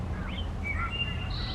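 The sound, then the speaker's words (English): A wood thrush, a migratory bird, sings behind the listeners at dusk: a few clear, flutelike whistled phrases with a slightly metallic, robot-like ring, rising and shifting in pitch, over a steady low outdoor rumble. “And that like metallic sounding bird behind us, which is really metallic cool.”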